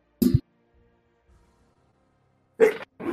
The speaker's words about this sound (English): To make it easier for everyone to understand what's going on, I'm about to sneeze. 1 second.